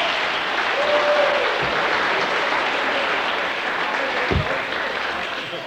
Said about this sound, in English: Give him a hearty clap. Come on.